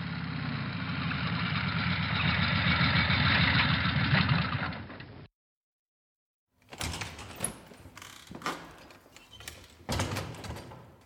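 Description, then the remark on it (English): A motorbike pulls up and idles with a steady low rumble for about five seconds, then cuts off abruptly; after a short silence come clunks and rustling handling noises. “I hear her motorbike pulling up now.”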